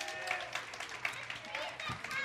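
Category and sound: crowd, audience applause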